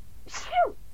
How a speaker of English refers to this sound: Excuse me. Sorry, reviews can't stop sneezing.